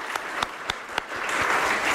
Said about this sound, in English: Round of applause.